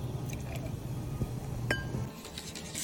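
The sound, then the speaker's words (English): About 2 ounces of pink Fresnay sparkling Prosecco pours into the bottom of a glass for a cocktail with a steady fizzing rush, and the glass gives a couple of sharp clinks partway through before the pour tapers off. No one speaks. “we're gonna add some Fresnay sparkling Prosecco. Pink, of course, because it's pretty. And for pickleball chicks. About 2 ounces of that in the bottom of your glass”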